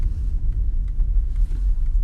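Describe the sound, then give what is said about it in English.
A motorcycle engine idles with a steady, deep low rumble that holds at an even loudness for the whole two seconds, with no voices over it. “It's a motorcycle.”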